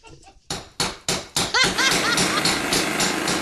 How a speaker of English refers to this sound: You have a jackhammer?